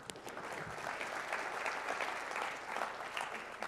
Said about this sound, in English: So I want to request you to give yourselves a round of applause, because this wouldn't have been possible without all of you.